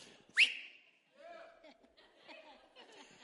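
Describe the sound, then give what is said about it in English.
A single short, sharp whistle, blown as a cue for someone to kick their leg, rings out loudly near the start, then gives way to voices chattering and a bit of laughter. “I'm going to whistle, you kick your leg.”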